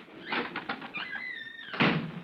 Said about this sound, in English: Slip out as soon as I open this door. I'll lock it behind us.